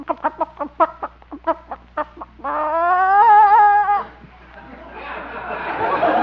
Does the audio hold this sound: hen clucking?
yes